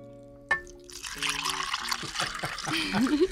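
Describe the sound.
Coffee is poured over ice into bacon-rimmed glasses in a steady splashing stream that starts abruptly and continues to the end, filling them about half full, with a voice murmuring faintly underneath.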